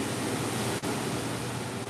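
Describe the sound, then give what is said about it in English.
Steady, full-bodied wash of virtual ocean surf ambience, a dense continuous hiss with no distinct breaking waves and one brief dropout near the middle; no voices or birds. “stand by the ocean, and it just feels like I'm standing by the ocean and there are no birds.”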